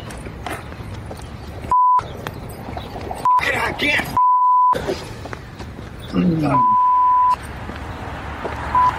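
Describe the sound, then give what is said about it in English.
A steady mid-pitched phone call tone beeps repeatedly at irregular intervals while the person called does not answer, each beep clear and fairly loud, over a busy background of voices and noise. “Can't get him on the phone. I'm trying.”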